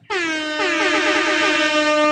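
A loud, blaring hip-hop air horn sound effect, a sustained brassy honk that starts abruptly and holds steady for about two seconds, with a slight wavering pulse to it.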